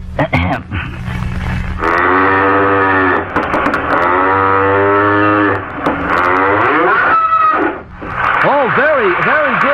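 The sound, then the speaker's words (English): A voice imitates a cow mooing in several long, loud, drawn-out lows with a buzzy tone, the pitch wavering and sliding, ending in a few quick rising-and-falling swoops. “Next, my interpretation of a cow.”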